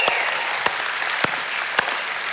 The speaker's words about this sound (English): Now, I know you're really cheering because you love the Lord, all right? That's why you're cheering, not because this is the day you get to eat again.